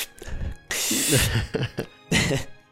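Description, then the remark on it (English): A voice imitates an inhaler, the ability of a made-up Pokemon: a long, loud hissing spray with a throaty vocal sound, a few short breathy gasps, then a second, shorter hiss. “his ability is inhaler. That's I awesome. Can breathe again.”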